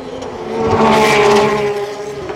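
A car engine revs up with a strong, buzzing harmonic drone that swells loud in the middle, then the pitch briefly drops as a gear shifts before the engine keeps pulling. No one speaks.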